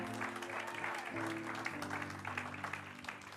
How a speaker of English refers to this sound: Come on, give Jesus a round of applause.